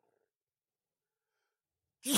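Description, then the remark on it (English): A single loud sneeze during allergy season bursts out suddenly after a couple of seconds of near silence, sharp and explosive with no talking around it. “I don't think I've ever sneezed on a podcast before.”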